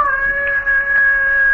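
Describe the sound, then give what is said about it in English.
A hound dog howls at night in one long, steady, unbroken wail, fairly loud, holding a single high pitch throughout with no one speaking over it. “Say, what's the matter with that hound dog urine? Doing a powerful lot of howling tonight, ain't he?”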